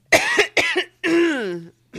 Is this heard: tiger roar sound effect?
no